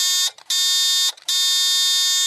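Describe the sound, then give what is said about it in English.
Three loud, harsh buzzer blasts signaling spoilers, with short gaps between them, each a steady, rich electronic drone; the first is brief and the last runs longest. No voices. “Okay, three buzzes, that's for spoilers, and now let's get into it.”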